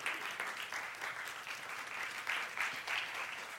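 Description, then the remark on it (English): An audience at a morning church service applauds for 'our King', with dense, steady clapping that fills the whole few seconds, a continuous crackling wash of many hands with slight swells near the end and no voices. “Can we clap for our King today?”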